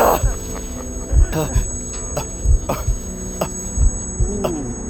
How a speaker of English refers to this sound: Sound was pulsating in and out of my ears, in time to my deceptively calm heartbeat.